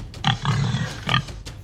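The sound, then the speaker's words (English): A pig grunts and oinks: a short snort, a longer rough grunting oink, then another brief grunt, fairly loud with no one talking. “That is a pig.”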